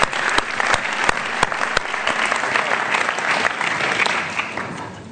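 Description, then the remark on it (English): An audience breaks into steady applause, many hands clapping in a dense, sustained wash with a few sharp individual claps standing out, holding strong for about five seconds before easing slightly. “You guys have some really special people that are stewarding this house, and so I just want to give a hand clap”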